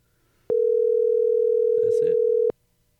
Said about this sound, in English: I'm just going to push the call button.